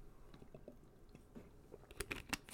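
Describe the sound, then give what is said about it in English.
Quiet mouth sounds of someone pausing from talking to drink water: small wet clicks and squishy swallows, with a couple of louder gulps near the end and no talking. “When you're by yourself, got to take a pause to drink some water because I could talk all day, you know?”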